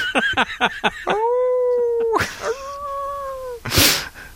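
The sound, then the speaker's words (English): Wolves howl in two long, steady, drawn-out notes, preceded by a quick run of short yelping calls, with brief harsh noisy bursts between and after the howls. “I'm cold and there are wolves after me.”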